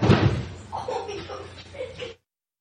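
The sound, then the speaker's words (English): Heavy, dull thumps from two 10-year-old boys jumping around upstairs, a loud burst at the start, followed by a couple of seconds of muffled young voices and giggling before it cuts off. “Too much thumping. Too much, please.”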